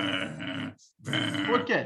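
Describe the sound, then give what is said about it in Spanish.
A voice imitates a dog growling when a person reaches to pet it, in two rough, throaty bursts separated by a short pause, the second rising into a harsher snarl at the end. “Y viene otra persona a pasarle la mano y el perro hace...”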